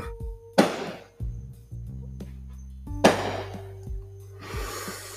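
Fireworks going off in the distance in somebody's front yard next door: two sharp, loud bursts about two and a half seconds apart, each trailing into a hissing, crackling tail, with softer pops after and a low hum underneath.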